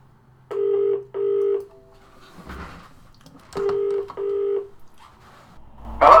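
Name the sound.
telephone number being dialed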